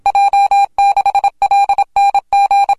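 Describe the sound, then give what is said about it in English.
Morse code keyed on a telegraph key as a loud, steady mid-pitched tone, broken into quick groups of short and long beeps with brief pauses between characters, and no voices. “We want more Morse code.”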